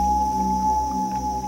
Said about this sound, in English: There's nothing more haunting than the sound of common loons singing across the lake in the summer.